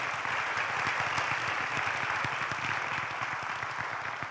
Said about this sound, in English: Wow. Let's give a clap offering to the Lord. Vamos a darle un aplauso al Señor.